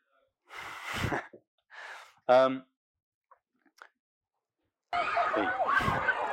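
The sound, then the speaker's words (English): Children at a playground behind trees shriek and yell in bursts: a couple of short outbursts, a sharp high-pitched scream, then a busier stretch of overlapping shouting voices toward the end. “So some of that screaming is from the playground, but I would say there was actually an equal amount of sort of screaming and play going on just in this”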